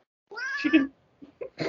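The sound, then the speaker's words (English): A cat being held like a baby lets out a long, drawn-out complaining meow, followed by a few shorter, clipped vocal bursts, fairly loud with no one talking. “Tina's having a visceral reaction to this information.”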